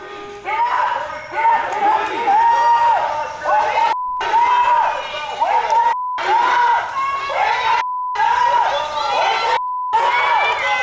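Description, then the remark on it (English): A loud crowd of Black Lives Matter protesters wandering through Georgetown in the middle of the night shouts and chants continuously with bullhorns while banging pots and pans in a busy, clattering rhythm, with a few brief cutouts in the sound. “They've got bullhorns. They're banging on pots and pans. Just making sure everybody's awake.”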